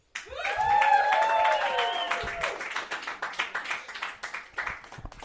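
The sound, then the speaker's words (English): An audience breaks into loud, steady applause with a few cheering voices rising over it early on, then the clapping thins into scattered, irregular claps toward the end. “Big round of applause for”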